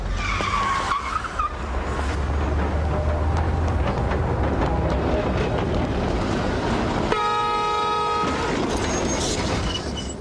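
A tram roars past in a loud, continuous rumble as it runs someone over, with a high metallic screech of wheels near the start and a single sustained horn blast toward the end. No one speaks.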